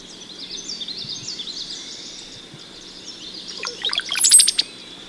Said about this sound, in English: But all that stuff in the foreground is a brown-headed cowbird. You can hear a common yellow throat, witchety, witchety, witchety in the background, but we're listening to the stuff in the foreground. Let's listen.